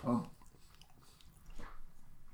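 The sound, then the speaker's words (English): A soft bite followed by a few seconds of moist, muffled chewing on a filled donut, with faint squishy mouth sounds and no talking. “Let's take a bite of this donut.”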